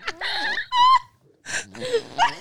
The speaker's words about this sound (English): really good at armpit farts. Amazing, I think.